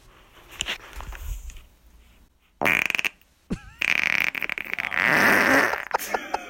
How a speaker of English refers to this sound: Are you serious? Dude, who is calling up and farting on our fucking voicemail? That's the funniest one we've had yet.